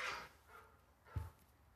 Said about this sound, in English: Your dog's barking.